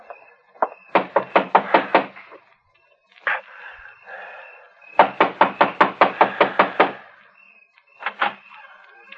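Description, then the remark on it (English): Loud knocking on a wooden farmhouse front door comes in two rapid bursts of about seven to nine raps each, with a few scattered knocks in between and no voices. “And then, after a half a mile of walking, you catch sight of a light in a farmhouse and cautiously make your way up to the front door.”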